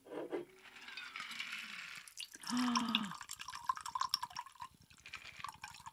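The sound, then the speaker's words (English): Straight alcohol with a little lobster dust is poured into a container, a steady splashing gush with a rising gurgle, then trickling drips toward the end. No one speaks. “So let's pour this in.”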